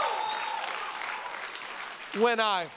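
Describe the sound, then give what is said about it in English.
An audience claps together in a dense, steady wash of applause as praise to God during a worship service, then a single loud voice rises over the clapping near the end. “Come on, just clap and thank the Lord.”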